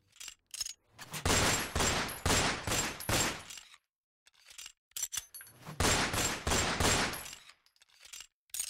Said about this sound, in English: The other two guards started firing at him from within the guardhouse with their pistols, and the bullets shattered the front window.